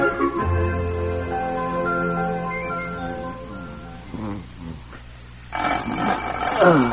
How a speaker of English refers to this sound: It's all right. It's the alarm clock. I'll get it.